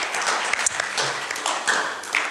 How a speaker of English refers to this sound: So could we just get a round of applause for Sabian again?